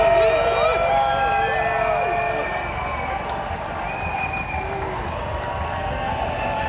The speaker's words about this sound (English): But of course, this was yesterday at Pride, where there was lots of cheering.